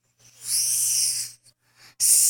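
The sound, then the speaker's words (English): A cicada's high, hissing buzz drones steadily for about a second, breaks off into a couple of brief faint bursts, then surges back loud. No one speaks. “And then they showed us the sound of a cicada of that creature talking.”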